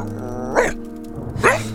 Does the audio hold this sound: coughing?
no